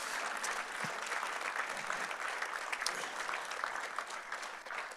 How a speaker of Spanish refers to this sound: Damos un fuerte aplauso por todos los que han levantado sus manos en este momento. Oh, Dios es bueno. Damos un aplauso una vez más al coro. Vamos, coro, vamos, vamos, vamos.